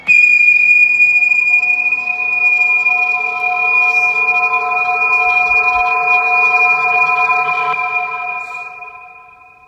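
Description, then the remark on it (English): A shrill, steady whistled tone from the 1931 German thriller film M, directed by Fritz Lang, holds at a nearly constant pitch for several seconds, loud and unbroken, with no voices, before fading out at the end. “Ah, that whistle.”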